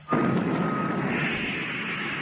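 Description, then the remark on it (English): A rocket motor ignites with a sudden loud burst, then settles into a steady, heavy roar that continues unbroken to the end, with a faint hum running through it and no voices. “Oh, thank goodness I don't have to get up again to turn the motor off.”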